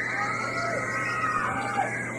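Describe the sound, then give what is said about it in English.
A crowd of kids at a church yelling together at full volume on a count of three, a dense, sustained wall of high-pitched shouting that holds steady for about two seconds without a break. “Let me hear you yell, kids. Get really loud.”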